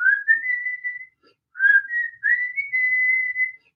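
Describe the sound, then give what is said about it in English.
A clear whistled melody opening a rock song, in three smooth phrases, each sliding upward and then holding a long, steady note, with brief pauses between them and no other sounds. “I'm not going to carry on, but there's a whistle start.”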